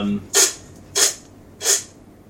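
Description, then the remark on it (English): A voice imitates ocean waves with three breathy, hissing "shhh" bursts, evenly spaced, each swelling and fading like surf, with quiet pauses between them. “That's the sound of the waves.”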